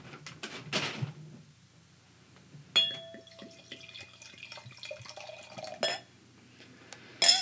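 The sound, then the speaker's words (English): Red wine chosen by a friend at Henry & Son pours into a glass with a soft, steady gurgle lasting a few seconds, marked by a light glassy clink and ring at its start and a few quiet knocks around it. No one speaks. “Pour yourself some. I am going to, so you got to not look.”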